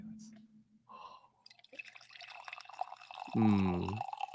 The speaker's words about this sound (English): Coffee pour.